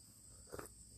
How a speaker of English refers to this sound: The crickets, or the whatever they are. It's nice. I like this.